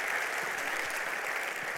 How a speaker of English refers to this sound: Come on, give me a round of applause for God being so good to us.